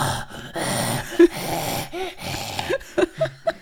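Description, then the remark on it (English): A person imitates the labored, asthmatic breathing a dog makes when it gets excited or stressed: raspy wheezing gasps and snorts, followed by a few short, squeaky honking sounds toward the end. “Like, their faces shouldn't be like that, but they're bred to be like that, and so that's why the dog has asthma, and when it gets excited or stressed, it's like.”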